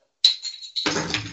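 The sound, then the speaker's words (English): A bottle of Valentine's beer from AleSmith Brewery, San Diego, California, is popped open, with a sharp hiss of escaping gas, followed by a fuller fizzing rush of sound. No one speaks. “Well, I am thirsty, so I'm going to just pop open a beer.”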